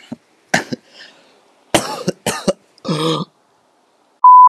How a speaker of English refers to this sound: Sorry for that. I was coughing pretty much.